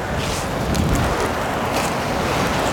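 A steady, loud roar of ocean surf washing against a rocky shore of large rounded rocks, continuous rushing water with gusty wind buffeting the microphone and no voices.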